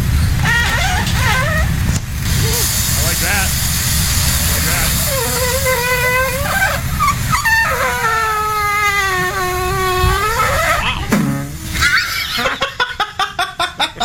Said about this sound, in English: The end of that is the best part, right? Where it's squeaking, squeaking, squeaking, then just goes bong, bong, bong. Again, the video called Waffle Poots, somebody recording their waffle maker as it makes squeaky toot noises.